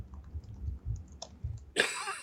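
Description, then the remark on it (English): A single harsh cough from someone who has been talking a lot bursts out near the end, loud and broad, after a stretch of low rumble and a few faint clicks. “Talking a lot makes me cough.”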